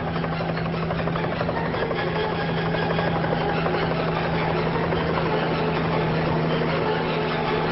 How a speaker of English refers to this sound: look up at the sound of a small helicopter coming into land